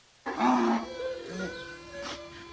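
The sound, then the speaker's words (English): A donkey brays loudly, a harsh, wheezing call that starts abruptly and stretches on for a couple of seconds with shifting pitch, no voices present. “Speaking of funny, how about a donkey crying over the death, or donkeys crying over the death of a friend?”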